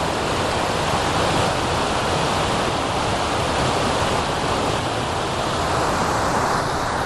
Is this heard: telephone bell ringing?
no